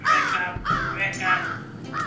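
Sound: crow cawing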